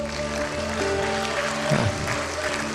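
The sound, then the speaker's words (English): A church audience applauds to give a man praise, in a steady, dense wash of clapping, with sustained organ-like tones humming underneath and a brief voice rising in the middle. “One more time, could you give him praise?”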